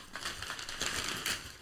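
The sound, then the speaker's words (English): Gift wrapping paper is torn and crinkled open as several presents are unwrapped, in a steady, hissy rustle, with louder ripping bursts toward the middle and end. No voices are heard. “Let's see what we got. Open them up.”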